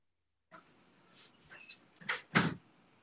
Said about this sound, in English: I just want to close the door to my studio. Sure. I just want to close the door.